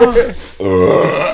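A deep, guttural burp, loud, rumbling on for nearly a second after a brief throaty sound at the start.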